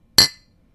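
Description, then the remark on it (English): A single bright clink of glasses touching in a toast over a whiskey cocktail, sharp and ringing briefly before fading into quiet, with no talking. “It's called a Spring Whiskey Sling. All right. Well, all right. Cheers. Cheers.”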